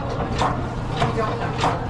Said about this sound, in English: So that is a really old washing machine, but right now she is churning butter in it. Churning butter. Taking milk and making it into butter. Churning.